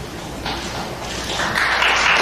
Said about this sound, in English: Applause. From the back of the room.